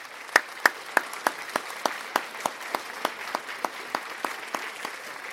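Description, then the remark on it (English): An applause sound effect played in a studio: a steady wash of clapping with sharp, evenly spaced claps standing out at about three per second. No voices are heard. “I couldn't find a more appropriate sound effect. But we've gone for some applause.”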